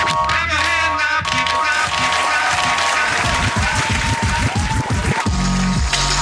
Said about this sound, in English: Thanks for coming out. Please clap.